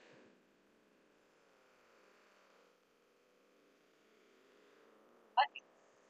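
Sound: clothes dryer running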